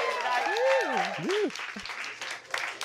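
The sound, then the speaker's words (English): A crowd at a singles mixer claps steadily as a dense wash of applause fills the space, while a voice cheers over it near the start, then the clapping continues at an even level. “Give it up for being here.”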